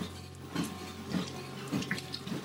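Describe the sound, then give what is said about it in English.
Water runs or pours steadily, with a constant wash of noise and a few brief splashy bursts, without any talking. “So, let's get some water here.”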